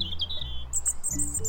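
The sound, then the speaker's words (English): A European robin sings a quick run of thin, high warbling notes, clear, over a steady low background hum. No one speaks. “We'll also be learning to recognise birds like this robin”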